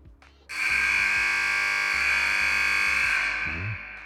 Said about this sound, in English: And that buzzer was for Princeton Onwus from Caledonia.